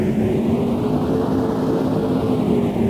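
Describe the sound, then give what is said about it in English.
A steady, loud engine drone with a low humming tone, its upper hiss slowly sweeping and warbling in a strange phasing whoosh, continuous throughout with no voices. “Can somebody please check on the spaceship engines? They keep making weird noises.”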